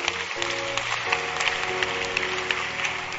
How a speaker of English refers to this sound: Clap for Jesus.